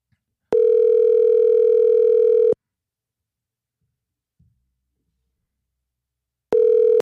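A steady electronic telephone ringback tone of an outgoing phone call sounds in a long two-second burst, then a pause of several seconds before the next ring begins, clear with no voices.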